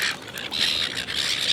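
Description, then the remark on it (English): A large crowd of gulls swarming around trying to steal hot chips squawks and screeches over one another in a constant, shrill chorus, fairly loud, with no pauses and no voices. “They've followed me and there's an awful lot of them now, swarming around trying to steal a chip.”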